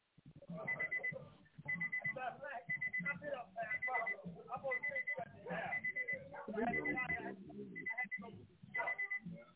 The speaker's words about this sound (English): We can hear you and your alarm in the background, caller. Call back in.